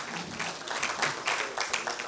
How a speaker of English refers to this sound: Come on, let's give him a clap this morning. Thank you.